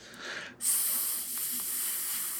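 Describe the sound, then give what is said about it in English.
A person imitates with their voice the sizzling or hissing sound of a UFO: a short breathy hiss, then a sudden loud, sustained airy hiss that continues steadily to the end. “Give me your best UFO hissing sound.”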